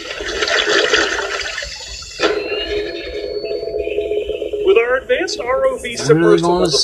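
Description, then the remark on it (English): Divers plunge into icy lake water only a few degrees above freezing, one following with a camera: a loud rush of churning water for about two seconds, then a steadier bubbling wash as muffled voices come in near the end. “I hit the icy water”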